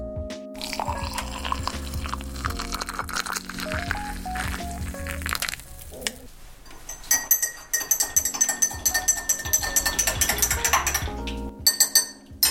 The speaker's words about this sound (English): So while all of those thoughts are brewing, like my second pot of coffee, and wait, let me see if I have a coffee shop, coffee brewing or pouring something sound effect. Hold on. I got you guys.